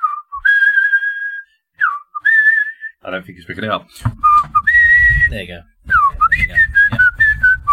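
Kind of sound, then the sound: human body sound, man whistling a tune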